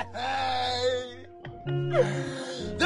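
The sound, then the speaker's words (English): A voice imitates a child screaming: two drawn-out, strained wailing cries, loud and high-pitched, separated by a brief break, with no words. “Imagine walking through a Walmart parking lot and you hear this fucking kid scream, when is the pain gonna end?”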